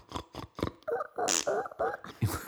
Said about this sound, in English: So the cold opening has the following in it: a wheelbarrow, which either sounds like it's farting or squeaking. It sounds a bit like our dog, really.